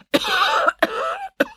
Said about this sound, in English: … broke down in a coughing fit.